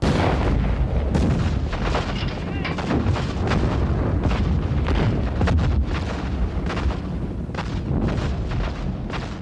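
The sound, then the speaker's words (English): The opening artillery barrage of the Battle of Vimy Ridge at 5:30, 983 guns and mortars firing: a continuous rumbling roar of overlapping booms with frequent sharp blasts punching through, loud and unbroken throughout, with no voices. “983 guns and mortars erupted with an earth-shattering roar.”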